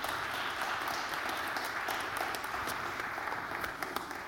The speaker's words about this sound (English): Give the Lord a clap offering, would you, and thank him for what he's done for you.